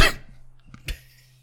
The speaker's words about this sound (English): Hang on, let me clear my throat.